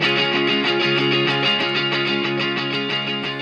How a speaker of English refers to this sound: And that's true with the exception of some reverb in the lead guitar.